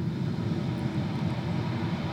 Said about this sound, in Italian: Potrebbe essere il suono del mare che sto riproducendo, diventiamo l'onda che si infrange, o potrebbe essere qualsiasi altro suono che voi state in questo momento ascoltando.